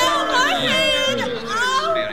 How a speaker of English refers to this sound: Super Indian and Mega Bear help Chester, Lena, Vivian exit the radio station, where they are greeted by an excited crowd and the tribal police.